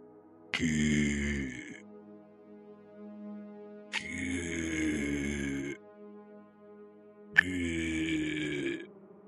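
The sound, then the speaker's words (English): A balding bird gives three deep, guttural groans in a steady repeating rhythm, each a loud, rough, drawn-out call with a buzzy, honking edge and short pauses between, at around 3 a.m. “At 3 a.m, like clockwork, the balding bird begins making a deep, guttural sound that is not English.”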